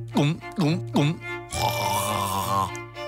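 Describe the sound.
Three loud, throaty gulps in quick rhythmic succession as someone swigs milk, a 2012 Jersey, followed by a long, breathy, satisfied exhale. The gulps sound exaggerated and voiced.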